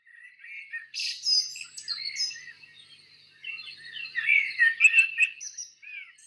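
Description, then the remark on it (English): Several Norwegian birds sing and chirp together in a continuous, overlapping chorus of bright, high-pitched trills and tweets, with no voices. “But before then, I will give you a riddle, accompanied by one of my favorite sounds, the sound of Norwegian birds.”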